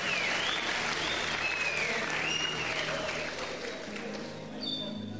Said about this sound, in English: Palmas para o Senhor. Clap to the Lord.